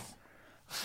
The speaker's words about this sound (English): Right, I'm going to blow my nose, so everybody enjoy the sound. I'll lean away from the mic. It's quite distorty, isn't it?